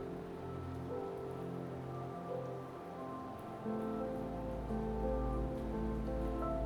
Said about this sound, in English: Be here with the falling rain.